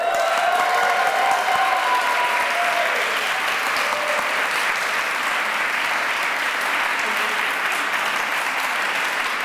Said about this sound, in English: Please give it another rising applause for these, our finalists.